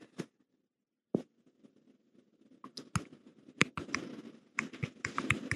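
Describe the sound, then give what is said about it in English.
Typing direct messages on a keyboard: a few isolated taps at first, then bursts of quick, irregular keystrokes that grow denser toward the end, with no one speaking. “I'm shooting a couple DMs here, see if anyone else wants to come up.”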